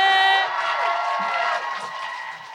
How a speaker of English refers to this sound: But let's please give a warm round of applause for my queen,